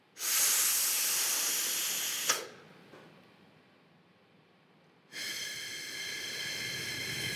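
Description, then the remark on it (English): Airy breath sounds showing how a smoker breathes on a cigarette: a long, steady, slowed inhale, a quiet pause of a few seconds as the smoke is held in the lungs, then a slow, hissing exhale. “So you're actually slowing down your breathing in, then you're holding the smoke in your lungs for a certain time, then you're exhaling very slowly.”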